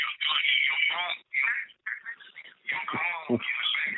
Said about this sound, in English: Your phone in the background, it has a delay and you're playing the show. Okay, how about now? There we go. Whatever volume you got, can you turn the phone down? Wherever the music coming from.